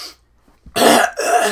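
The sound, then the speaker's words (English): Two loud coughs in quick succession, harsh and raspy, each a broad burst of noise after a brief quiet lead-in, with no talking. “Oh, the coughing, yeah, on the coughing on the iPad, wiping my nose.”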